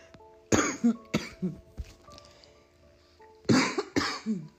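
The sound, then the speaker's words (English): Someone who has been coughing for two weeks coughs hard, two harsh coughs in quick succession, a brief pause, then another pair of loud coughs, with no talking. “Well, I can't wait till I stop coughing.”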